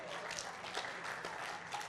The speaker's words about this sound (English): Give our drama team a big clap today.